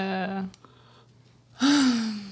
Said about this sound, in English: Yeah. That was a good yawn. That felt good.